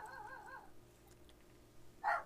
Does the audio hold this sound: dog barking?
yes